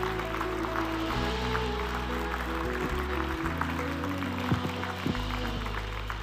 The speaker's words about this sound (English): And everyone said, can we give God a hand clap of praise in the house?